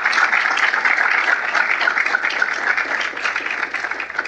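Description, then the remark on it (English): A crowd applauds Dr. Fulner, former president of the Heritage Foundation, steadily, a dense, even wash of many hands clapping at once that holds at a fairly loud level for several seconds, with no voices over it. “So round of applause for Dr. Fulner, who's got a real important history of both.”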